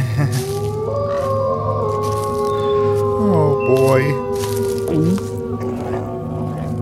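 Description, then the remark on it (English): A werewolf howls in long, drawn-out wavering tones over a steady low growl, with a few rising yelps midway, in a graveyard under a full moon on Halloween night; a man briefly speaks over it. “Okay, it's just a wolf, Gareth. Nothing to be concerned about. It's not a wolf, it's a werewolf!”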